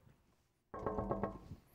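After a beat of near silence, someone raps on the glass door of a mansion about four times in a quick, fairly even rhythm. The knocks are loud with a ringing, resonant tone, and no one speaks.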